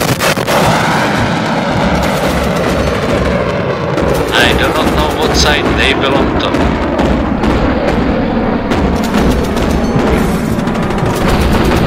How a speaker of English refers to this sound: Wait a minute, there are huge explosions on the horizon. The entire sky is lighting up like flashes of the sun rising. Massive fireballs. The explosions are getting closer.